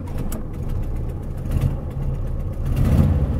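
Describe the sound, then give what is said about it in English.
A car engine rumbles at a steady idle, a low continuous drone that swells slightly louder toward the end, with no voices. “Let me go ahead and start the car here.”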